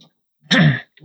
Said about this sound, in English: Clear my throat.